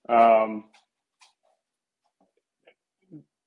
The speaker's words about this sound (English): Sorry, dog's going nuts right now.